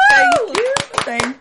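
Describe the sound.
Applause in a steady rhythm, roughly six sharp claps in quick succession, with a voice speaking or cheering loudly over the top.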